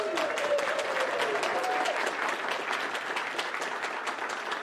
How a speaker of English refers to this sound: I didn't have a pause for applause in my notes.